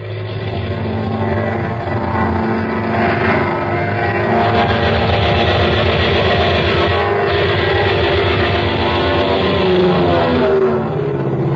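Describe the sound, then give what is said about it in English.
An airplane engine roars loudly and steadily as the plane dives toward a target during shooting practice over a field near Gadeau, its droning harmonic tones shifting slightly in pitch over about eleven seconds, with no voices. “The plane circled the field, once again approached the target.”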